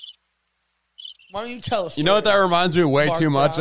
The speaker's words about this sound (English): Is that crickets?